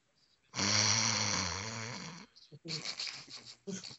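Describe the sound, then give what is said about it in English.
A loud, drawn-out snore made by a voice, exaggerated and droning for over a second and a half, followed by a short stretch of talking. “No, I'm snoring at your wrestling jokes”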